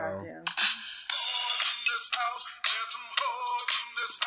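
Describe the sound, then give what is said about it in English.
A phone ringtone plays an 80s-style remix of a song: bright, dense synth-pop music with punchy, rhythmic hits, loud, running continuously with brief dips between beats. “Is it my ringtone? Yeah, it's your ringtone now.”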